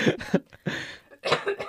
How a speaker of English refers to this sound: Sorry, I have to cough that out first.